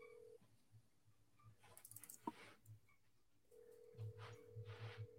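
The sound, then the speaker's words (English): A dropped phone call followed by dialing: a steady telephone tone cuts out, quick clicks and short keypad beeps follow, then the tone returns with a low pulsing hum. No one speaks. “Hey, been having problems with my phone all day. Looks like we got disconnected.”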